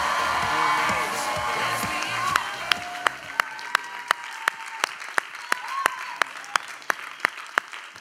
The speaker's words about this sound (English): All right, let's try that again like we actually mean it. Why don't we give Jesus a round of applause?